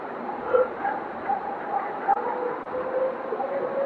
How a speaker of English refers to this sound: Is that a dog or is that the howl? That sounds like dogs.